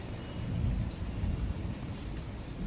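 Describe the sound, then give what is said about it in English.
A low, continuous rumble of thunder rolls beneath steady rainfall during a thunderstorm in Singapore, the heavy bass swelling briefly before settling into a dense, even hiss of rain with no voices present. “don't think I had ever experienced a thunderstorm quite like the ones that you have here in Singapore.”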